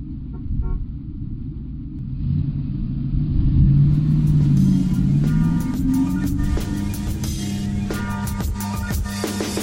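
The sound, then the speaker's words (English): A heavy bus engine rumbles loudly, its pitch rising as it revs and pulls away, with steady low mechanical droning and clattering throughout and no voices. “Let's get on the bus.”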